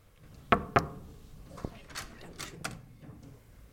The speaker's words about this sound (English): So I'm going to go and knock on the suite door now and go and say hi to Dave.